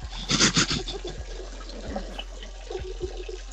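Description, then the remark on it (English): A man urinates into a toilet: a strong, steady stream of liquid splashes into the water, opening with a louder gush and then running on continuously with small splatters and drips. No one speaks. “My God, that's a stream and a half. It's a goddamn waterfall.”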